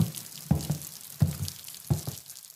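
Rain dripping in slow, steady drops, about one every two-thirds of a second, each a soft, low plop over a constant faint hiss. No one speaks.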